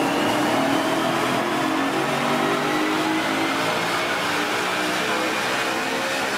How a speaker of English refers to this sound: The first example I'm giving you here is a vehicle that is already a pretty mammoth engine in it and developing a lot of horsepower. And just listen to the sound of this for a few seconds.